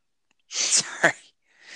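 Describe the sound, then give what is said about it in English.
A man clears his throat briefly and harshly in two rough, breathy bursts lasting under a second, the second one sharper and louder, followed by a short pause and faint hiss. “Whoa, look at that. He's clearing his throat.”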